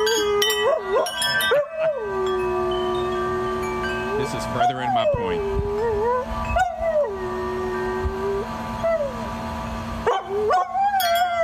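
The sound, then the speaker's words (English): A dog howls in long, wavering, drawn-out notes, pausing between them, while bright wind chimes that the dog plays tinkle and ring in the background. A person speaks briefly over the sound. “Well, this dog loves wind chimes so much because the dog likes to play the wind chimes and then sing along to the wind chimes.”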